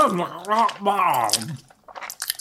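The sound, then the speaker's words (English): A drawn-out, wavering voiced murmur of enjoyment gives way to a short burst of soft, wet chewing and smacking sounds as someone eats a hot dog. “And now I'm going to eat. Ooh, there's a whole hot dog in my cummerbund.”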